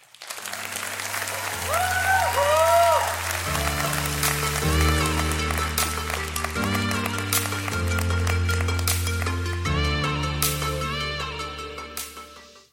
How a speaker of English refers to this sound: And finally, this is an exciting, fun day, so you are allowed to cheer and praise God and give clapping encouragement to the speakers that come out and speak to us.